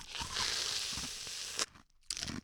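Loud, close-up crunching of food right against the microphone, a dense crackling burst lasting over a second, then a short pause and another crisp crunch.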